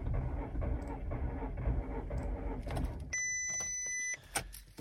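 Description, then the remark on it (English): A Volkswagen Golf's engine gives a steady low rumbling drone, then a high, steady whining tone cuts in for about a second, followed by a few sharp clicks and knocks. “holding phones up into people's ears with the noise from his Volkswagen Golf”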